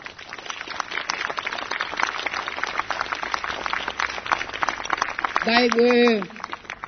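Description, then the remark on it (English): An audience claps steadily for the people of Yundamu, a community in Central Australia, in a dense, even patter for about five seconds, and then a single voice rises briefly over the applause near the end. “I'd like you guys to put your hands together and give a clap to the people of Yundamu.”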